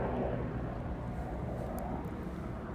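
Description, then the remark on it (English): A helicopter passes overhead, a steady, loud low-pitched rumble and whir that fills the whole stretch without fading. No voices are heard. “Well, let's wait for this freaking helicopter to fly by.”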